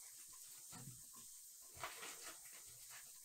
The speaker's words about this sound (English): Now you can hear everything sizzling. Easy peasy. We're doing this in one pot. So the Instant Pot, or if you're doing it in your giant soup pot, either way.